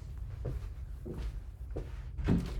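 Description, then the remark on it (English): A door is opened to let in a cat that was scratching at it, with a few soft knocks and shuffling thumps, moderately quiet, ending in a slightly firmer clunk. “Now my cat is scratching at my door. What a fucking way to start. I'm going to let him in.”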